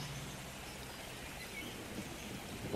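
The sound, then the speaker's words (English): A steady, soft hiss of light rain falling continuously, an even wash of gentle patter with no voices and no breaks. “The rain was gentle at first, slowly turning into a light shower.”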